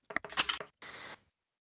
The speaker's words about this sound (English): Did you hear my dice roll that time?